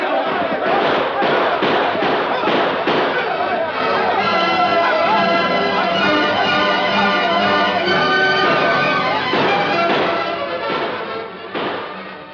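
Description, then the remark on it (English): Heavy gunfire cracks out in loud, repeated bursts, echoing through a canyon at night as a sheriff's posse moves in on an outlaw gang. A chaotic din of shouting voices swells in the middle before more shots ring out near the end. “As the sheriff's posse moved in to surround and capture the outlaw gang, heavy gunfire echoed and re-echoed throughout the canyon.”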